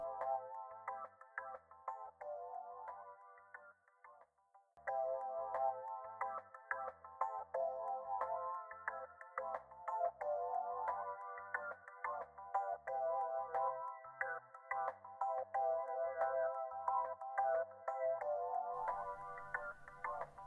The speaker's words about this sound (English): Enif, you are in your shop, just putting away your note in your pocket when you get a phone call from Kernunus.